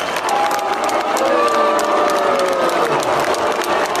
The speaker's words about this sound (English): You guys hear the booing? They weren't booing Pence.